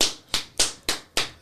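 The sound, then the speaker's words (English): Sharp, crisp hand claps repeat in a quick, steady rhythm, about five or six in a row, each a bright slap with a short decay, with no voices. “You know why they called it the clap? Because every time you piss, you go...”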